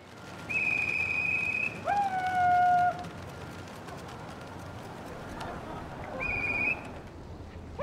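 A flock of pigeons in a pigeon flying show, swooping, gliding, spinning and dive-bombing overhead through the night sky on a dry evening, marked by sustained, airy whistling tones at several overlapping pitches that slide and fade in twice, over a steady low background murmur.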